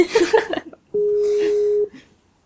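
A single steady ringback tone from an outgoing phone call sounds for about a second, clear, following a brief stretch of background talking.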